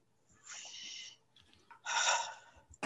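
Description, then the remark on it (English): Two slow, deliberate breaths of fresh air taken after stepping outside: a long airy inhale followed by a fuller, louder exhale, with a brief pause between them and no talking. “Breathing. Good air, bad air. Good air, bad air.”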